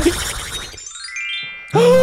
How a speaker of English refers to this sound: Chime.